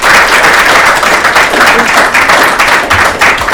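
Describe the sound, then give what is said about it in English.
Sustained applause from an audience, a dense, steady wash of many hands clapping at once, loud and even throughout with no voices on top. “Let's have a round of applause again”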